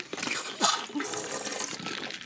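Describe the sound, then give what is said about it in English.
Someone sips coffee: a couple of wet, hissy slurps of liquid lasting a couple of seconds, fairly loud, with no talking. “Let me get a little coffee sip.”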